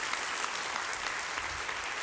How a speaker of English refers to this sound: Can you give Casey a great big round of applause? So cool.